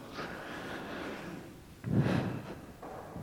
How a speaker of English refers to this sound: Heavy breathing.